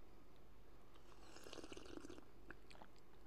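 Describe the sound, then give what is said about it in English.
Soft slurping and swallowing sounds of someone taking a first sip of a freshly poured drink, with faint liquid gurgles and a quiet mouth noise, no talking. “First sip.”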